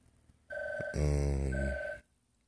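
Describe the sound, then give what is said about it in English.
A telephone rings once, a loud electronic tone lasting about a second and a half, buzzier and fuller in the middle before cutting off into quiet. No one talks over it. “I swear every time I'm doing this podcast, the damn phone rings every time.”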